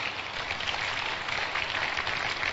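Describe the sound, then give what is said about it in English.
An audience claps together in a dense, steady wash of applause that holds at an even, fairly loud level for a few seconds with no voices over it. “Clap for Jesus.”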